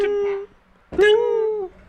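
A dog howls twice: a short steady mid-pitched note, a brief pause, then a longer, louder howl that bends gently up and back down before cutting off. No one talks.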